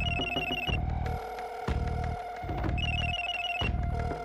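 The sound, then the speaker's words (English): A phone ringtone rings from deep underground, in a repeating electronic pattern, bright tonal bursts alternating with low buzzing pulses, steady and fairly loud with no voices. “Then she heard a ringing on the other line. The ringtone emanated from the ground deep, deep below her, buried in the darkness.”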